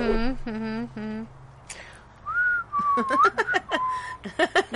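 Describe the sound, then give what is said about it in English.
A person whistles a short melodic tune from the film Kill Bill, the clear tone sliding and stepping between notes, with a brief voice just before and some sharp clicks scattered through. “I used to walk around, like, whistling that song for a while.”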